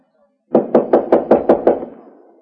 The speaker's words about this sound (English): Knock on the door.